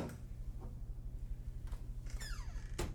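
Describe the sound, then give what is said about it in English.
A few sharp clicks as a door handle is turned, then a rising-and-falling creak as a door swings open, ending in a firm knock over a low steady hum. “I turned the handle and entered.”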